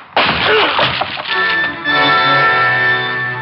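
The locked plywood door of Dr. Van Arthur's office is smashed open in one loud, splintering crash lasting about a second, then a steady sustained tone hums on underneath with no one speaking.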